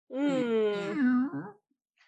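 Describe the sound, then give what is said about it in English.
A person imitates a cat's meow: one drawn-out, wavering vocal cry that holds steady, dips, then rises slightly before trailing off, followed by near silence. “Well, the cat noise.”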